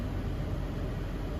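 A steady, dense rumble of commuter traffic on a bridge, heard from underneath it, low and continuous like cars passing overhead, with no distinct individual vehicles and no voices.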